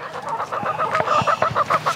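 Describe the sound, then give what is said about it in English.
Several chickens cluck in a busy, overlapping chatter while being fed, short repeated calls rising and falling with a steady, bustling rhythm and no talking. “When I get to Gott's house, she feeds her chickens.”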